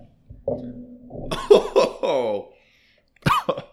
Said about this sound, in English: I'm trying not to like cough to the mic. That's a full shot. That's not very good.